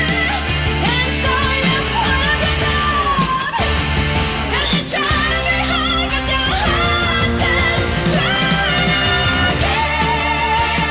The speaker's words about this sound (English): It's a great song. I enjoy this. It's very cinematic. It's epic.